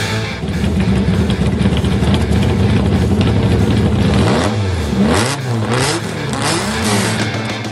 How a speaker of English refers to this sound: All right. I love that car sound. Of course, that car sound is courtesy of Artem. I'm playing one from the vault. That was that TVR Cerbera I played last week on the show as well, which just shows my laziness in finding other car sounds to play.